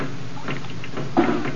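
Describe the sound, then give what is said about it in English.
Raindrops drip plinking into assorted pots, pans and pails placed around a living room in an irregular patter, with one louder, ringing drop near the end among softer taps. “For as we look in on the Rileys now, we find them listening to the pitter-patter of the raindrops dripping into assorted pots, pans, and pails placed at strategic points in the living room.”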